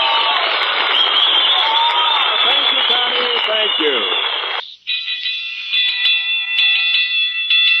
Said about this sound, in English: That alarm is still ringing.